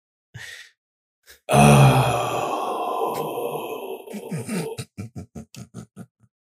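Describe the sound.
A voice imitates someone straining while taking a shit in a tin can: a short breathy burst, then a long loud strained groan that breaks into a quick series of about eight choppy grunts trailing off.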